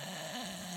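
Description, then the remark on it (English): A person imitates a man's snore with their voice, as heard during a car trip: one short, rough, buzzing breath lasting under a second, with a slight rise and fall in pitch. “I do snore like that.”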